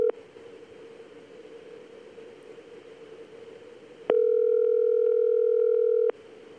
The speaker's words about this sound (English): Hello? It's ringing. That's two ring-a-dings. One ring-a-ding.